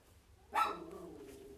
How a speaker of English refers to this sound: And we got the dog barking upstairs, of course.